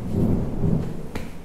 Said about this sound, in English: Oh, sorry about all the thunder going on.